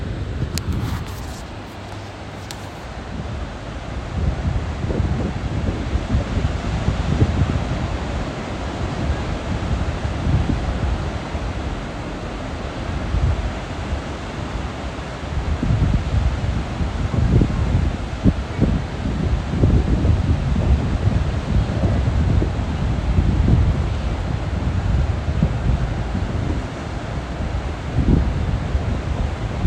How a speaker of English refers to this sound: You're hearing the waves in addition to the wind.